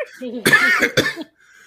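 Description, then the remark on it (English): A short, harsh coughing fit: two or three rough, raspy coughs in quick succession, fairly loud, with a brief wheezy breath before and a quiet pause after. “No, that would be the strawberry cough.”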